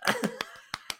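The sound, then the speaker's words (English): A handful of sharp hand claps land in a loose, slightly uneven rhythm, about six in a second, like a small burst of applause from just a person or two. “We're giving applause.”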